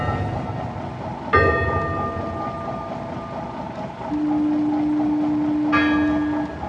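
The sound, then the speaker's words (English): A gong buoy rings out twice in fog, about four seconds apart, each metallic strike shimmering and fading, over a steady low engine rumble with a brief droning tone between the strikes. “There's a gong, too. Do you hear it?”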